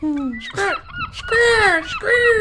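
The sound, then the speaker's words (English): A voice imitates seagull calls with four loud, nasal squawks, each sliding and wavering in pitch, the longer cries drawn out with short gaps between them. “Look, close your eyes and you hear the seagulls.”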